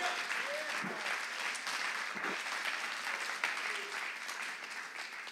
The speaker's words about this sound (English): Come on all over this room and give him a round of applause this morning. Clap your hands.